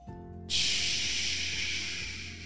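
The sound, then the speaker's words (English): After a brief quiet pause, a voice makes a steady, breathy hiss to imitate pouring rain, holding the sound for about two seconds and fading slightly toward the end. “Can you make the sound of rain?”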